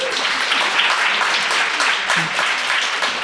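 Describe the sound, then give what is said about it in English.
A crowd applauds steadily for a few seconds, a dense wash of many hands clapping at once with no clear individual beats, fairly loud and even throughout. “Yeah, we're preaching to the choir a little bit, but we definitely got more clapping on the kind of crisis type.”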